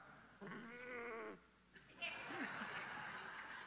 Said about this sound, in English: You didn't know you were coming to Easter to see a sheep, did you? Never know what you're going to find in church.